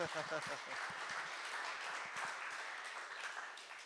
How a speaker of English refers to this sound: And how many of you from out of state are considering moving here? All right, round of applause for you guys.